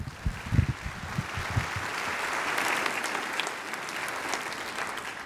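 An audience breaks into steady applause, a dense wash of many hands clapping that holds at a moderate level for several seconds, with a few louder individual claps early on.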